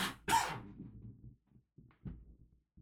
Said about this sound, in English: Don't cough, please. Sorry.